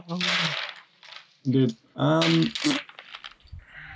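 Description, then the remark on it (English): Dice, including D4s, clatter and rattle across a hard floor in a few scattered bursts while voices exclaim loudly over the tumbling; the dice were launched from a dice box across a bedroom when a duvet was kicked over. “So when I kicked my duvet over me, I kind of just launched my dice across my room.”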